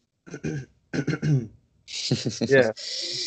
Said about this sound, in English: I'm just trying to hide that cough.